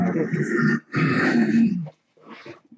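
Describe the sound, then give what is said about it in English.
Someone clears their throat in two loud, rasping, guttural bursts, each just under a second long, followed by a softer, shorter rumble trailing off. “Clearing my throat.”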